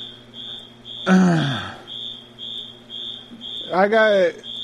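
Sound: smoke alarm beeping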